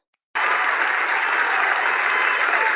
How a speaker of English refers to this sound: Congratulations to Ben Simmons. This is his first award. Congratulations. Clap it up.